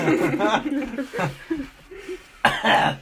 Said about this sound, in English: Sorry, I coughed.